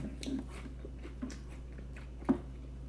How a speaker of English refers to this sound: Sorry, French toast crunch in my mouth.